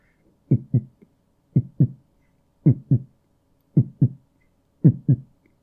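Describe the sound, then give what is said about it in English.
A heartbeat thumps in steady paired beats, lub-dub, five times at a slow, even pace, low and muffled with near silence between each pair and no voices. “For however long, I would just look at myself while I was listening to my heartbeat.”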